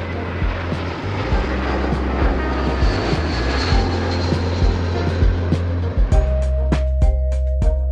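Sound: airplane engine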